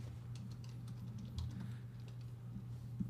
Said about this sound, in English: Putt, man. I can't see what I'm typing in. I don't even know what I'm typing.